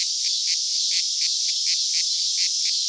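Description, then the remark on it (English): Dense, shrill cicada buzzing fills the air without pause, pulsing slightly several times a second, loud, with no voices or other sounds. “Cicadas are an entirely different plant-sucking creature. They're back.”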